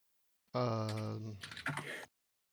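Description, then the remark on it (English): A voice holds a steady hummed note, then a short burst of quick, irregular computer keyboard typing clatters for under a second before stopping, as someone tries to type into a livestream chat. “Sorry about my typing.”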